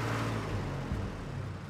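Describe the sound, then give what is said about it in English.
A jeep's engine rumbles loudly, its steady low drone easing slightly as the driver slams on the brakes and the vehicle stops hard, with no voices. “Grandpa slammed on the brakes.”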